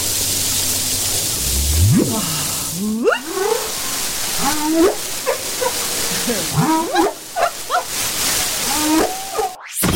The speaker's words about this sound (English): Or are they trying to intimidate the guys by having a really complex song? Or is it both? The whale.